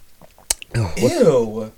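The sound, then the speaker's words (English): A sharp, loud crunch like a bite, a smaller click after it, then a drawn-out, wet voiced sound that rises and falls for about a second. “What am I supposed to do when you bite around?”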